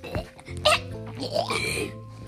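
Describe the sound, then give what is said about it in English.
A buzzy, rising and wobbling flatulent noise lasting a couple of seconds, a voice imitating a whoopee cushion deflating as someone sits down, with a short giggly burst near the start. “Every time I sit down, it goes like... Oh, it's a whoopee cushion.”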